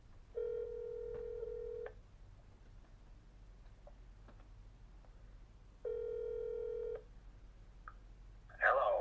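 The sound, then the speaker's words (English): A phone line rings out twice as an interviewer calls a guest, each ring a steady electronic tone lasting over a second with a long pause between, faint clicks in the gap, then a brief crackly burst as the line connects. “So we're not going to be able to keep him on the phone for too long, but we're going to go ahead and give him a call here.”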